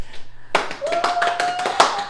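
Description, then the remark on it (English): An audience gives a big round of applause as a guest, an actress and photographer, is introduced on a show: many hands clapping in a dense, uneven patter that breaks out suddenly, with a steady high whistle-like tone carrying over the clapping. “Big round of applause.”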